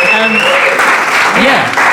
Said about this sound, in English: Round of applause for that, because that is brilliant.